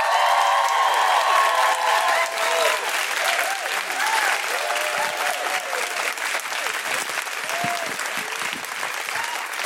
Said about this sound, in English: One of my favourite acts coming out now. Please put your hands together and make incredible Guilty Feminist woohooing noises for the wonderful Jayde Adams!